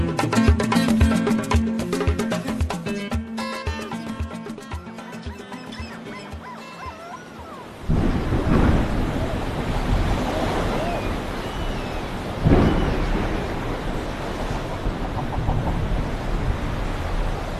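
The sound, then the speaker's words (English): After a stretch of music, strong wind roars over heavy sea swell coming in, with loud waves surging and crashing, one big surge rising midway through the steady rushing noise. “The wind is really picking up. There's a big swell coming in, huh?”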